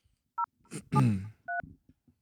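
Three short touch-tone dialing beeps sound at uneven intervals, clear, as a phone call is placed, with a brief murmur of voice and faint rustling mixed in around the middle beep.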